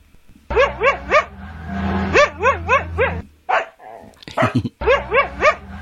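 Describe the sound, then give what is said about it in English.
A dingo gives clear bursts of high, whining yelps, mostly in rapid groups of three, with a few short rougher barks and whimpers between them and no talking. “Dingo.”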